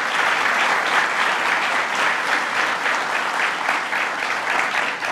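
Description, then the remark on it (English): Sustained applause from a sizable audience at Buffalo State University for President Conway Turner, a dense steady patter of many hands clapping at an even level for several seconds with no voices rising above it. “Let's give President Conway Turner a round of applause.”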